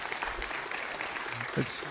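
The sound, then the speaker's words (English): An audience at a church service claps steadily in a dense, crackling wash of applause to welcome a pastor to the podium, with a faint voice or two murmuring underneath near the end. “So it's always good to get the clap before.”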